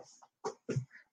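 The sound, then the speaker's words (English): A pet dog named Lola bumps and kicks against a table, making two dull, uneven thumps about a quarter second apart, with a few fainter scuffs before them and no one talking. “Maybe I need to ask her to have you stop kicking my table, little Lola.”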